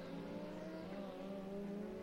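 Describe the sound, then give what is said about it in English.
Race cars braking into turn 12, a wide-entry corner with a big flat braking zone. Their engines make a steady, loud harmonic drone with slight shifts in pitch that runs continuously for the whole moment, with no voices. “That's another one of those wide entry corners down into turn 12, and it's got that big flat braking zone into it.”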